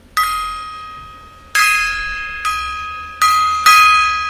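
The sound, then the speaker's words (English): A gong is struck five times at uneven intervals, each hit ringing out bright and metallic before fading, with later strikes cutting in over the decaying tone. No one speaks. “More gong.”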